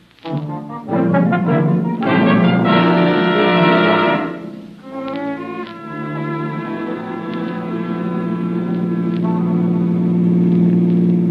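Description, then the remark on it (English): A car drives by loudly, its engine roaring with a deep steady rumble and a shifting, droning pitch that briefly dips midway. No voices are heard. “Hey, That car that just passed us”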